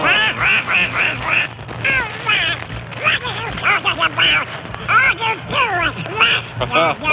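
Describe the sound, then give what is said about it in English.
Donald Duck's raspy cartoon voice jabbers in rapid, quacking bursts of garbled speech, loud, with a steady low hum underneath throughout. “Ladies and gentlemen, need we tell you that's Donald Duck, as crotchety as ever.”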